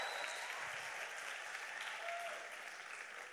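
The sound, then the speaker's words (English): A crowd claps steadily for their youth pastors, a dense wash of many hands applauding at a constant level without pause, with a faint murmur of voices mixed into the clapping. “So I want you to take a minute and give them a huge round of applause, because they are incredible.”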